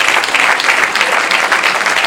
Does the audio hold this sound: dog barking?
no